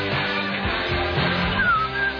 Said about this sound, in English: Yeah, that's completely whistling. Yeah. What a great song.